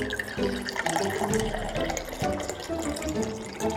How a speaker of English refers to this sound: You're pouring your water bottle into the keyhole? That's right. When the water freezes, it'll take the shape of the key.